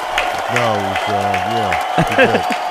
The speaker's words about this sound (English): Are you clapping